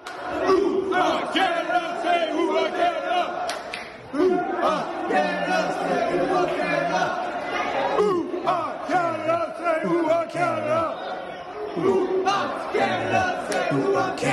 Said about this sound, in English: This is what people are chanting in the Canada House and en route to the soccer stadium